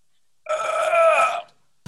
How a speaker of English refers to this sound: That was a really good burp.